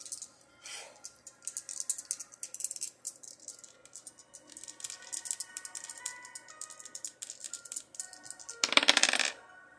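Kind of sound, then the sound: household object, dice being rolled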